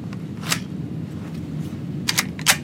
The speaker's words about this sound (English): So I'll load the firearm here.